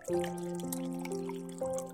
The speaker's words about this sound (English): It was now 3:30 in the morning, and I still couldn't sleep. I went to the kitchen and poured myself a glass of water.